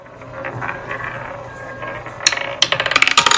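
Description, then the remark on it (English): A spinning roulette wheel whirs with a steady mechanical rattle, then breaks into a run of sharp, rapid ratcheting clicks that slow slightly as it winds down, with no voices. “The wheel is rolling.”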